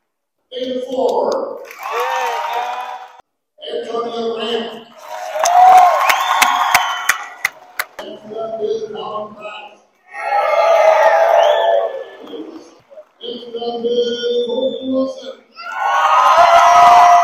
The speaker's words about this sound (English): Wow, hear that cheer. Senior basketball players.